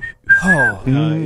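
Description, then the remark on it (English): A person whistles a short, high, sustained note that slides slightly, alongside a low hummed or voiced tone, imitating a Western-style whistled melody. It is fairly loud, lasting only about a second. “Even like the Kill Bill soundtrack, when you hear that like whistling. The whistle. The Western whistle.”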